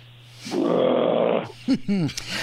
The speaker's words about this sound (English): I like the growl at the end. That's the growl of frustration, right?